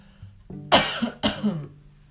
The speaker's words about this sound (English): I'm so sad that I coughed in this. I should edit it, but I don't think I'm going to.